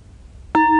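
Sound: bell being struck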